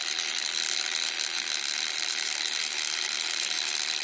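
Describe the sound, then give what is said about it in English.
A timer ticks away in a rapid, steady mechanical clatter, bright and crisp, holding an even level throughout with no voices. “And the timer is almost up.”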